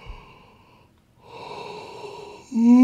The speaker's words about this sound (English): Ooh, I never stifle a yawn. And don't apologize for it either. Yawning is a good thing.